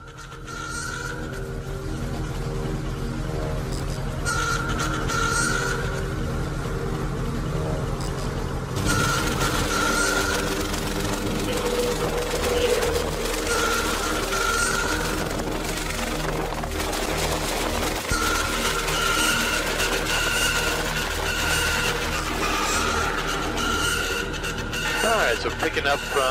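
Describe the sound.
A helicopter engine runs steadily throughout, a dense low rotor throb layered with a constant mechanical whine, while muffled voices come and go over the drone, as the throttle is rolled up for a gentle pickup on skids from ground with brush and rocks.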